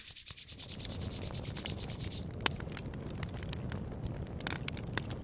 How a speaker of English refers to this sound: let's start this fire.